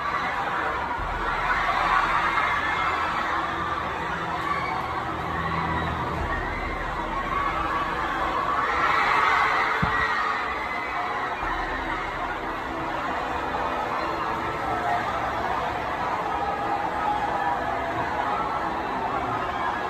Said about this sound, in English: Listen to the audience while this cat's falling. It's nuts.